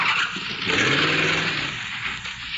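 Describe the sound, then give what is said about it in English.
A car engine revs hard as the car is driven off, its rising roar mixed with a harsh, hissing screech like squealing tires, loud for a couple of seconds with no talking. “Sonny, don't take my car!”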